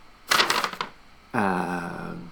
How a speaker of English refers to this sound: All right, got the potty award results here, guys. You guys ready for this? Rip that goddamn envelope open right now.